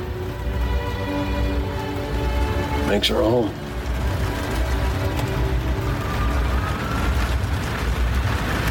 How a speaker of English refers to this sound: Storm's getting worse. We'll pass through it soon enough.